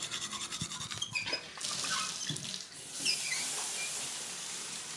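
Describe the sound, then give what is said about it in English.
A few clinks and knocks, then tap water gushes steadily into a coffee pot as a person makes morning coffee with about a pint of water, a bright rushing stream with a short dip in flow midway. No talking. “a pint of water in the coffee”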